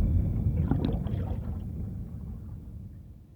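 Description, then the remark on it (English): Icy ocean water sloshes and churns against a low, steady rumble as a boat sinks under the waves, with a brief burst of splashing early on before the sound gradually fades. No voices are heard. “Moments later, their boat sinks under the waves, taking all their food and their radio with it.”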